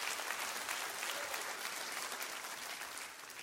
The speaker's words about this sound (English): Amen? Come on, clap your hands. God's been too good to us.